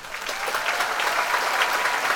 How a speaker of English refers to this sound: Should just pad out the rest of the show with noises. Why don't we use that one more? I have three clapping noises.